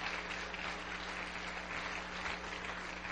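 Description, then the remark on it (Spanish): A church audience claps together for God in a dense, sustained burst of applause that holds steady throughout, with no voices over it and a faint low hum beneath. “Alaba a Dios, vamos, regálale un aplauso fuerte a Dios.”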